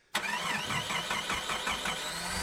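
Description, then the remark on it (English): A car engine cranks over loudly, the starter churning with a steady, rhythmic chug as it struggles to catch, with no voices over it. “Yeah, that's about what my new car sounds like. It wants to fire up, but”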